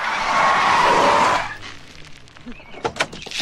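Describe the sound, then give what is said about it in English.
A loud tire squeal and skid from a jackknifing sugar truck lasts about a second and a half, then fades into scattered clatter and a few sharp knocks. “Jackknife sugar truck.”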